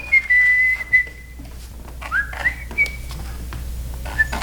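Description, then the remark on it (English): Clear, whistled bird notes ring out alone: a long steady high tone, then a rising slurred phrase, and a few shorter chirps spaced apart over a faint low hum. “Those are birds.”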